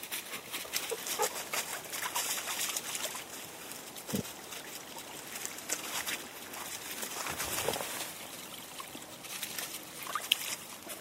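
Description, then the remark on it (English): Wellington boots squelch and splash through a waterlogged path on a walk, a steady run of wet sloshing steps, with no one speaking. “Now, if you can hear that, that's actually the path. And luckily, I'm wearing my Wellingtons.”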